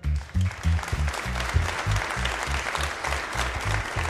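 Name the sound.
audience applauding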